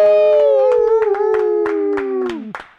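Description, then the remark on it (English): Steady rhythmic hand claps, about nine in quick succession, from a comedian clapping for herself as she takes the stage at a comedy show, sound under a long, loud, howl-like vocal whoop that slowly drops in pitch and cuts off at the end. “I never feel bad when I clap for myself.”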